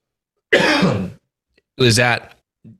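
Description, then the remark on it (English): Two loud coughs a second apart, the second rougher and more voiced, followed by a brief faint grunt at the end. “I'm going to cough again.”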